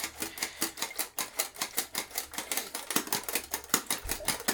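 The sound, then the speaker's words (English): A film developing tank being agitated for about 10 seconds with a water stop inside: a steady, rapid rattle of sharp knocks and swishes, roughly four per second, continuing evenly for several seconds with no one speaking. “So agitate for 10 seconds.”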